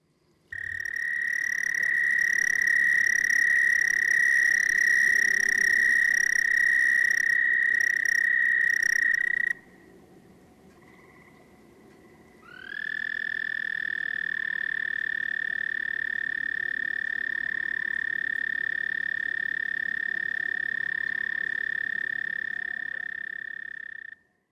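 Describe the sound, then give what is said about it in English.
Long, steady high-pitched trills of male American toads calling for mates at the water's edge in April: one continuous buzzing trill for about ten seconds, a brief lull, then another sustained trill that fades at the end. No talking. “Next to come out in April are the American toads.”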